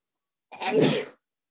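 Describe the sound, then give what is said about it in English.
A single sharp sneeze bursts out, a short explosive blast lasting about half a second, with silence before and after and no one talking. “Bless you.”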